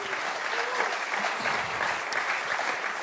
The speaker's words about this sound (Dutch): Laten we hem daar een groot applaus voor geven.